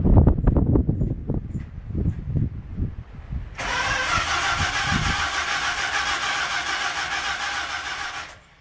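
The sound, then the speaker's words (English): An old car engine, like a family car of the late 1960s, cranks with a rapid, rhythmic churning for a few seconds, then catches and settles into a steady, loud running roar. No one speaks. “Many of my experiences with my dad's car were something like this.”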